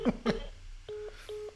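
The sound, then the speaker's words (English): Two short, steady electronic phone tones from dialing a phone call beep one after the other, clear, following a pair of brief throaty bursts like quick coughs. “She's probably looking at the phone, thinking, "What no is he way. Calling? No way.”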